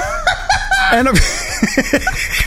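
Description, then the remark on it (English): A voice imitates a chicken, singing the Chinese chicken song as a short run of rhythmic clucks with rising and falling pitch, fairly loud, mixed with snickering laughter. “And then does he sing the Chinese chicken song?”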